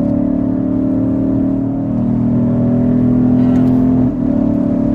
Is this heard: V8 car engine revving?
yes